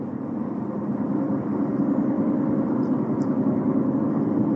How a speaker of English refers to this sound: Okay. Nobody. We have traffic. Like 285.